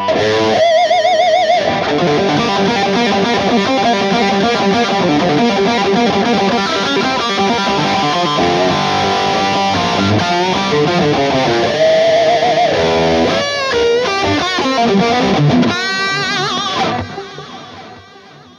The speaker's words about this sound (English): You know, you can get the aggression out of the low notes on the bridge pickup, right? That's the … trick.